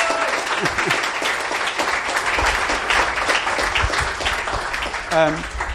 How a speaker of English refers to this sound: It's long overdue. So I think we should all give him a round of applause.